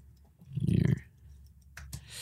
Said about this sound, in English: If you hear typing, that's just me.